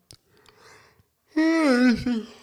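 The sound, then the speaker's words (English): A person yawns: a soft breathy intake, then a loud, drawn-out voiced groan that slides downward in pitch and trails off, with no talking. “Good old yawn.”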